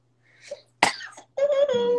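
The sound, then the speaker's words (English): A soft intake of breath leads into a sharp, explosive sneeze, followed by a drawn-out vocal sound as the person recovers. “Did you know when you sneeze, your heart stop?”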